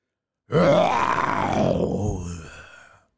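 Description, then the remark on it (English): A person imitates a bear's growl: one long, throaty groan lasting a couple of seconds, its pitch rising and then sliding down before fading out, with no talking around it. “Do I have a bear sound?”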